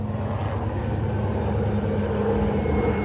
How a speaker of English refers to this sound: Big choppers coming. Yeah.